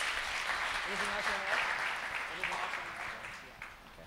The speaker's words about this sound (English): Can we give God another round of applause, please?